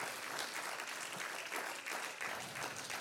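A church audience applauds the Lord steadily, a dense, sustained wash of many hands clapping at once at an even level without any voices standing out.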